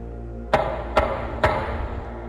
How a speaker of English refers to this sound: A third knock sounded through the house.